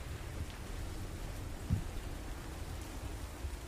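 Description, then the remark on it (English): Steady, dense rainfall hisses throughout over a deep, constant rumble of a battering morning storm, with one brief low thump partway through, like a crack of thunder. No voices. “The morning passes in this battering storm.”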